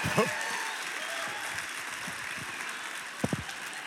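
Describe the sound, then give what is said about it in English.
Steady audience applause fills the whole stretch, a dense wash of many hands clapping at moderate loudness, with a few brief voice-like bursts rising over it near the start and end. “Oh, y'all gonna clap for me for that?”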